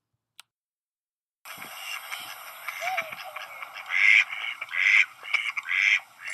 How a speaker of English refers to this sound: I arrive at Jim's Bridge and all the waterfowl are here. The abandoned Peking duck has joined the mallard families.